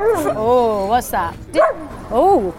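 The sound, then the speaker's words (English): A female pet dog barks in a high, whiny voice: one drawn-out yowling bark followed by three shorter, arched yelps, loud and clear with no other sounds around them. “Why are you barking?”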